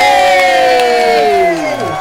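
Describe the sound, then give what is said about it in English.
A crowd cheers and applauds the winning team loudly, with one long whooping voice that slowly slides down in pitch over a steady bed of excited noise and possible clapping. “Another round of applause for the winning team.”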